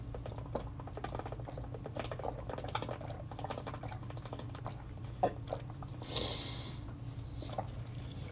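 Someone drinks water, with small gulps, sniffs and wet mouth sounds over a steady low hum. A brief breathy rush follows near the end; no one speaks.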